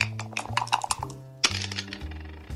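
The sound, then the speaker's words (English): Dice clatter across a backgammon board in a quick burst of sharp clicks and rattles, with a steady musical tone humming underneath; the dice are rolled to predict the score of a football season's opening game. “Okay, so here we go with the first dice prediction for the opening game of the season.”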